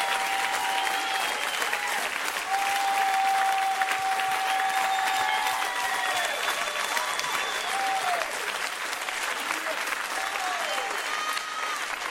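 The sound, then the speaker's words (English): A large audience claps and applauds steadily throughout, a dense wash of hand claps with scattered cheers and shouts rising above it. “Those who are clapping, you have already broken through.”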